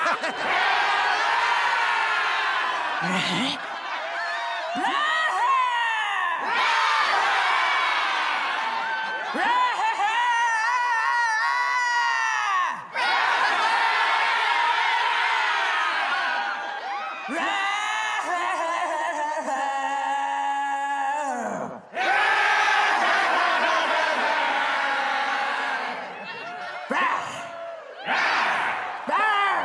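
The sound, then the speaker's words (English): A crowd cheers loudly in response to a performer's growl, a dense roar of voices with whoops and screams rising and falling across the whole clip, never dropping to quiet. “she does the first growl, crowd response, and then she gets a big smile”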